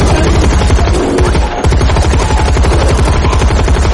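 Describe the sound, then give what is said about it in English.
A loud automatic rifle is emptied of its entire clip into a bear's head, firing in rapid, sustained bursts, the shots blurring into a continuous rattle with only a brief hitch partway through. No voices are heard. “And taking Lena's action from the script, Radek opens fire with the automatic rifle, emptying the entire clip into the bear's freakishly deformed head.”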